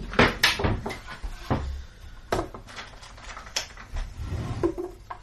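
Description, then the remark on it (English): A cupboard door is opened and shut as a dice box is fetched from inside, on top of the toaster, with a series of sharp wooden knocks and clatters and a low thud, followed by quieter rattling and shuffling, with no voices. “It's inside the cupboard, on top of the toaster.”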